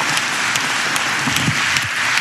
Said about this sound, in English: Dude, thanks for putting your life on the line for folks, man. I appreciate it. Give him a round of applause, man.